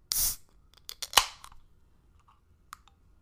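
A can of prickly pear wheat ale from Grand Canyon Brewing Co. cracks open with a sharp hiss of escaping gas, followed by a few small metallic clicks and taps, with no one speaking.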